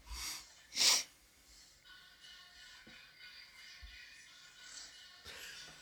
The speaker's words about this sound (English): You can hear it snort. Oh, that's an English bulldog, by the way,